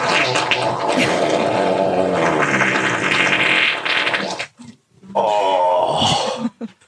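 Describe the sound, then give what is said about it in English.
A long, loud, raspy fart from a played video montage blasts for several seconds, then after a brief pause a second shorter, buzzy fart follows, with no talking. “You think you can fart bigger than me?”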